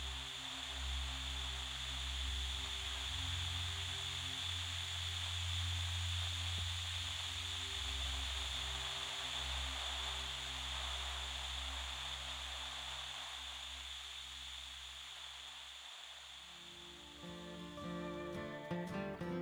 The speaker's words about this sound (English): I turned on the TV, and a chill ran up my spine. Static. Just static.